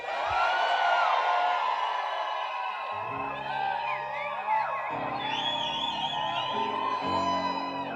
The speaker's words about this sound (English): All right, you shouted, but I didn't see joy on your faces. Let me try again.